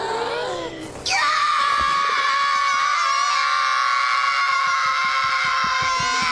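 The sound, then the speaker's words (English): Several babies scream together in a loud, sustained, high-pitched wail that bursts in after a second of brief chatter and keeps going without letup. “They do the screaming and the adults come running in.”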